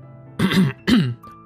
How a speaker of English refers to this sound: Even now, she coughed awkwardly, looking aside.